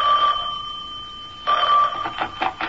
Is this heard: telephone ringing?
yes